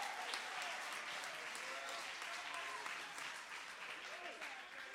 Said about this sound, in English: Somebody clap your hands and give the Lord some great praise.